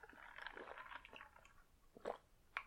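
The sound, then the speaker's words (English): Wet mouth sounds of someone gulping down a drink, with a steady run of swallowing noises followed by two sharper, louder gulps near the end. No one speaks. “Oh, those gulps.”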